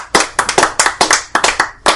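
A brief round of applause from a small group: sharp, bright hand claps in a quick, uneven patter, loud and crisp, with no one talking over them.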